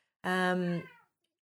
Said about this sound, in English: There's an interruption from Prof, Cash's cat. Hey, Prof.